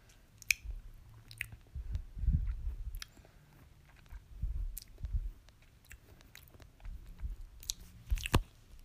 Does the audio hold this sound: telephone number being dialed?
no